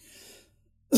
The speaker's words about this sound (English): Coughing. I'll try not to spit on anybody.